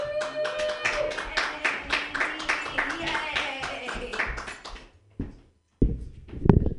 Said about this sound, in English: Hey, clap for me.